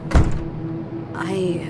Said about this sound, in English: I said, shut the door.